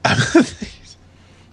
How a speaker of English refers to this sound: Oh, man, I'm going to sneeze.